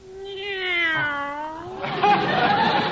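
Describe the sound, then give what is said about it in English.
A cat named Minerva lets out a long, drawn-out meow that bends in pitch, then breaks into a rougher, raspier cry. It is fairly loud, with no talking. “Oh, here's Minerva now. Good morning, dear.”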